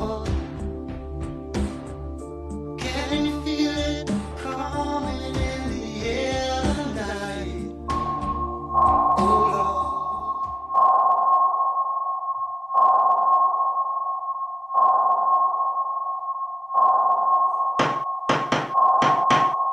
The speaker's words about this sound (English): Morse code. Mm-hmm. I hear the tapping. Morse code.